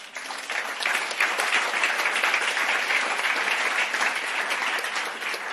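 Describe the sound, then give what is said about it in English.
A large audience in Ghana claps steadily and loudly for the Church of Pentecost, a dense, sustained wash of applause that swells quickly and holds at full strength for several seconds without any talking. “Can you clap for that church?”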